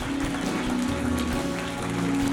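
Steady, dense applause from an audience as people walk forward guided by ushers, a continuous wash of many hands clapping at moderate volume with a low hum underneath and no clear rhythm.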